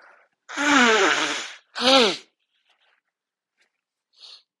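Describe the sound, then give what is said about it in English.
Someone blows their nose forcefully twice, a long honking blast and then a shorter one, both loud and harsh, followed after a pause by a faint brief sniff. “Just wanted to blow my nose on that one.”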